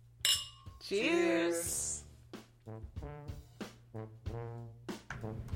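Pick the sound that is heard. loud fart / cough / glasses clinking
glasses clinking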